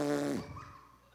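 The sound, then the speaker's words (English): A short, buzzing raspberry blown with the lips, imitating a fart: one loud burst that lasts under half a second, then trails off into quiet background noise. “Sometimes I make fart noises in conversation”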